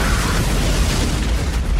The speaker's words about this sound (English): Okay, here's the first lion roar used in a fire. Sorry, not really a roar. It's like a tiger growl. Yeah, tiger. And it's even worse here.